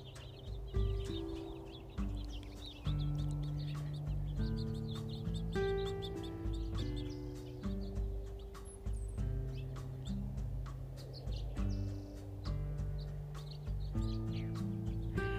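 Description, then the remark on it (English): Birds calling around a feeder, with steady low clucking and cooing notes mixed with scattered brief chirps and sharp clicks, continuous throughout, with no talking. “I love feeding the birds, though. I love it when they come by and you could hear them.”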